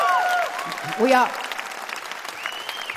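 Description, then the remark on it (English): An audience at a live show cheers and applauds for two musicians, with steady clapping under loud whoops and a few high whistles rising and falling over the noise. A sharp swell of shouting comes briefly near the middle. “Let's have a big old scream for them.”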